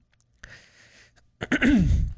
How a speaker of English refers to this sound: Man, I cannot clear my throat this morning.